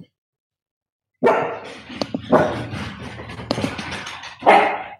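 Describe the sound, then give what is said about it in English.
Dogs, woken by someone coming in, bark in a sudden burst after a moment of silence, several loud barks overlapping in an irregular flurry, with a couple of sharper yips mixed in. “Okay, so whoever came in, it woke up the dogs.”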